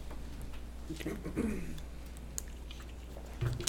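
Someone takes a quiet sip of a drink, with soft wet mouth sounds, a brief swallow and faint clicks against a low background hum.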